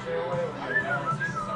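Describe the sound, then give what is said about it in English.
A thin, breathy whistle made by sucking air inward, its pitch wobbling and breaking into a few short, uneven tones against faint background murmur. “Yeah, if I suck in, I can kind of, but I can't control the pitch.”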